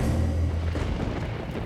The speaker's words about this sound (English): Violent rain pelted down onto the roof of the Palacio de Linares.